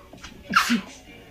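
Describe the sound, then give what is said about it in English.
A single sneeze, fairly loud: a quick sharp burst of breath followed by a short voiced release, with no talking around it. “Every time the weather changes, I seem to get this weird, like, congestion, flu, sneezing. Here it comes.”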